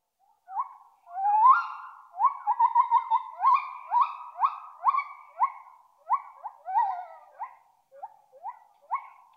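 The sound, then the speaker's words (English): A gibbon's howling call: a rapid series of rising, musical whoops repeated over a dozen times, loud and clear with a slight echo, no voices present. “The howling call of a gibbon can travel up to 2 miles across the dense rainforests of Borneo.”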